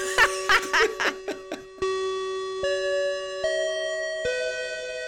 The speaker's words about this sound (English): That bell means another episode of the After School Anime Club's come to a close.